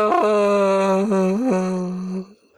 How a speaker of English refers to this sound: It sounded like you were yawning in the middle. I'm sorry, we're keeping you awake.